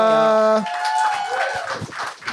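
A sustained musical note cuts off and a crowd breaks into steady applause with scattered cheers and whoops, the clapping filling the rest of the moment at a fairly loud level.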